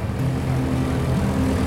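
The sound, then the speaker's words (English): A propeller aircraft drones steadily at a fly-in at Echuca, Australia, its engine a loud, continuous low hum with a rough throbbing edge and no voices over it. “This weekend, we'll see over 100 visiting aircraft.”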